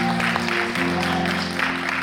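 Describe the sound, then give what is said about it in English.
A crowd claps steadily for about two seconds for the first lady of the house, a dense, even patter of many hands over a sustained, droning musical tone underneath. “Come on, let's clap our hands for the first lady of this house.”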